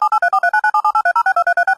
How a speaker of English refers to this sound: See, so it's just really quick touch tones.